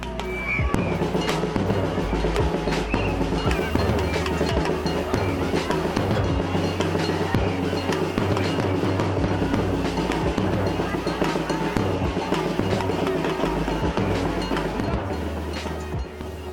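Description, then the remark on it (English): A dense crowd of women at a street march calling for women's rights and justice cheers and chants in protest over a steady, pounding rhythmic beat, with sharp percussive hits and continuous loud noise throughout. “In the following clip, women cheer and protest to a rhythmic beat.”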